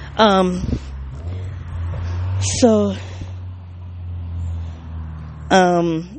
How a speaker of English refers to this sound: There's a car pulling up on the side of me. And I try to be observant as possible.